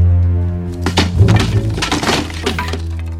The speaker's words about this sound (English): Smashing that chair won't help, sir. It will. It will, I tell you.